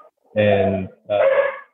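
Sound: dogs barking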